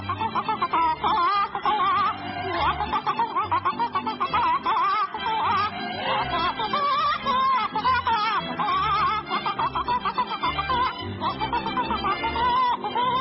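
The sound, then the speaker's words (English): A person imitates a clucking chicken with quick, choppy bursts of voice mixed with snickering laughter, loud and running steadily throughout. “Now get up on my desk and pretend you're a chicken again.”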